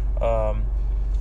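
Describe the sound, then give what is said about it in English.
Steady low road-and-engine rumble fills the inside of a car moving slowly in traffic while driving to a gym, with a brief voiced sound near the start over the continuous drone. “As I'm speaking now, I'm in traffic.”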